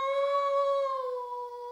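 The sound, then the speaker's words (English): A man from Wisconsin imitates a wolf howl with one sustained, steady vocal tone that slowly sags in pitch near the end. It is fairly loud, with no other sounds. “All right, give us a wolf”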